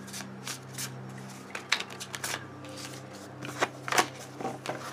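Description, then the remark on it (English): Tarot cards being shuffled before a reading, a run of crisp papery riffles and flicks in irregular bursts over a steady low hum, with no one speaking. “Let me shuffle.”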